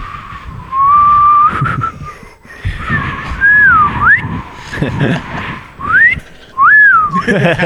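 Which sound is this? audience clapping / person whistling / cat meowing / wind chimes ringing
person whistling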